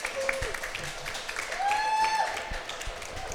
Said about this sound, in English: I want everyone to give another round of applause